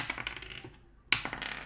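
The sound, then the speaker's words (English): Dice rolled for a constitution save clatter across a tabletop in a quick burst of small hard clicks, go briefly quiet, then land with one sharp knock followed by a short rattling tumble, with no voices. “Roll me a constitution save.”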